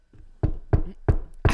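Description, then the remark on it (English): Four sharp knocks on a window in an uneven rhythm, each a loud thud with a quick rattling decay, preceded by a faint low rumble. No voices. “Do you hear that knocking?”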